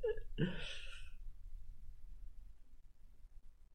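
hiccups

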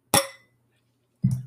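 wine glasses clinking

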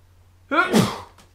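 sneeze

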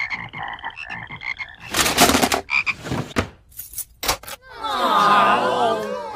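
frogs croaking

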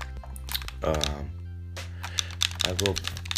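computer keyboard typing clicks

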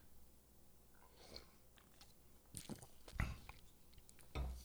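sipping a drink

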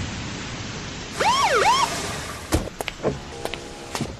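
police car siren

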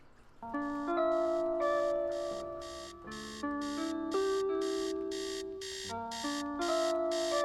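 alarm clock ringing

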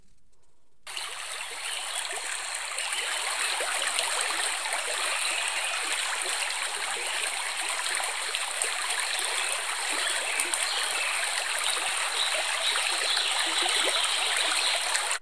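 flowing river water

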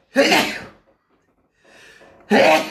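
sneeze

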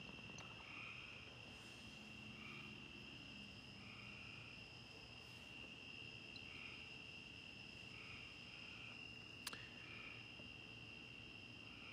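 crickets chirping

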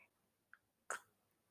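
sipping tea

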